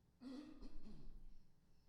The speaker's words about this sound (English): I know what you're thinking. How many times will he clear his throat before he drinks that water? I'm just doing it to mess with you.